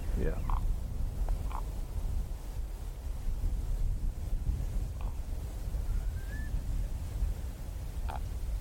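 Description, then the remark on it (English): Raven calls ring out over steady wind rumble: a few short, hollow croaks spaced a second or more apart, with one brief rising musical note in between. “Yeah, although the croak is their most famous sound, they actually do quite a lot of musical caws of various descriptions.”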